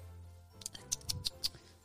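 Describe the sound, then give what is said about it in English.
A quick run of about five light knocks on a door with a giant door knocker, roughly evenly spaced, sharp and fairly quiet, with no talking over them. “Knock on the bloomin' door!”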